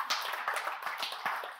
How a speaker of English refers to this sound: okay, we can clap, I'll take it, let's move, yeah, I'll take some energy.